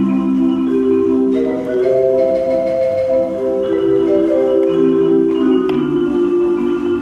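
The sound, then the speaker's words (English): A theater organ plays its marimba voice: sustained, steady chords that shift a few times, loud, with no talking and no pause in the music. “So there's like a marimba.”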